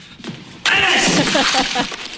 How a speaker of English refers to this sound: He just kicked a bonsai tree, which I think was a dig at Mr. Miyagi.